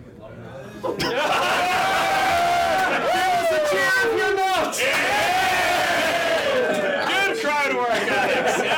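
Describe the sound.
A live audience bursts into loud cheering and whooping as fans of the U.S. Handball Federation, with many voices shouting and rising together in a sustained roar that holds steady for several seconds after a quiet start.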